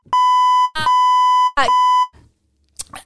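A loud electronic buzzer sounds three times in close succession, each a steady, harsh tone lasting about half a second, with brief noisy bursts between them and a faint clatter at the end.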